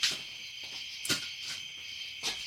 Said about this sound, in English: Crickets, frogs, yeah, we hear them.